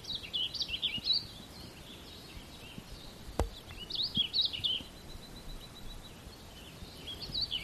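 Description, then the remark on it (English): Birdsong in bursts of bright, warbling chirps and trills, a phrase at the start, another mid-clip and a brief one at the end, over quiet outdoor ambience with no talking. “In the same way that we invite the bird song, and we welcome all of our experience.”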